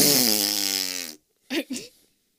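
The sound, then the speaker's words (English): A voice imitates a person blowing his nose into a tissue, a loud, honking nose blow: a long, buzzy, low-pitched blast lasting about a second, followed after a pause by two short, breathy snorts. “He takes a package of tissues out of his shorts pocket and blows his nose. Loud.”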